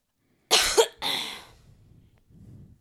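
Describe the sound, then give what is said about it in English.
Two sharp coughs in quick succession, the first harsh and forceful, the second slightly softer, trailing off into quiet breathing noises afterward. “Every time you're coughing, I'm fucking just scared, dude.”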